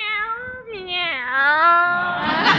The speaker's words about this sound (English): Meow, meow. Look at Minerva. She looks like the cat that swallowed the canary.